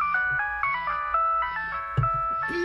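A bright, electronic mobile phone ringtone plays a repeating melodic tune of stacked tones, loud, with no one speaking over it.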